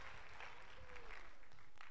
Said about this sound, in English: Would you want to put your hands together even as he comes to share the word?